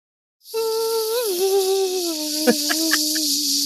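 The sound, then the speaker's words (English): A kazoo buzzes one sustained, nasal mid-pitched note for about three seconds, wavering and dipping slightly in pitch, with a few short clicks near the end. No one speaks. “Well, does anybody have any sort of a kazoo or a whistle?”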